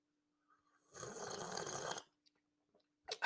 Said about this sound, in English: I'm going to take a sip of my hot cup of black coffee.